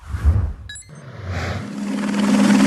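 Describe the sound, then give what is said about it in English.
A helicopter's rotor roar swells steadily louder, joined by a sustained droning whine from spinning blades, with a brief high chirp early on and no voices. It is a Helisaw: eight 30-inch diameter whirling saw blades dangling from a high-performance helicopter, used by the utility PG&E to clear tree limbs from power lines. “This is the aptly named Helisaw, an array of 8 30-inch diameter whirling blades dangling from a high-performance chopper.”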